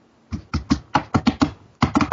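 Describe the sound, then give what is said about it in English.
A rapid series of about a dozen sharp computer keyboard key strikes in uneven bursts, standing in for a sound effect of walking away, with a brief pause before a final quick flurry of taps. “I don't have a good sound effect for walking away, so I'm just hitting my keyboard.”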